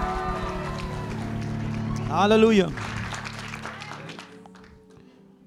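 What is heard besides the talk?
audience applauding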